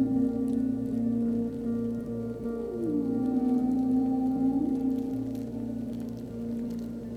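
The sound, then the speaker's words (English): A dense, continuous underwater crackle of the tiny clicks of millions of snapping shrimp sifting through the sand on the ocean floor looking for food, like fizzing soda, runs throughout, beneath steady low tonal moans that glide upward partway through. “As you sing, you also hear the tiny clicking of millions of shrimp sifting through the sand on the ocean floor, looking for food.”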